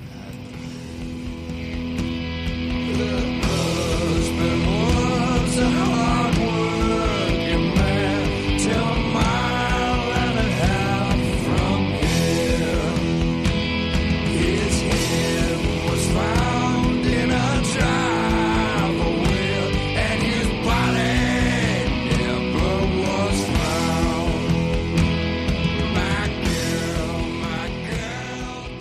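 A recorded rock cover song in which two men sing together over a full, loud band, with steady drums and guitars running continuously from start to finish.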